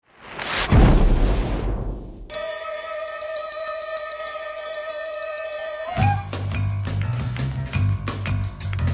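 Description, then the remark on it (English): A loud self-destruct explosion sound effect bursts out and rumbles away over about two seconds, then gives way to a steady, sustained electronic tone and finally a rhythmic musical passage with heavy bass. “This tape will self-destruct in 5 seconds.”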